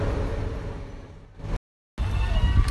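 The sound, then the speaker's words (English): Steady low engine rumble and road noise from inside a moving shuttle bus on its way to Universal Studios in Orlando, Florida, loud and continuous, cutting out briefly to silence partway through before resuming. “we are signing in from a very jazzy shuttle bus on our way to the Wizarding World of Harry Potter”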